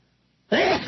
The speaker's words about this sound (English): Oh, I'm sorry. I think I'm going to sneeze.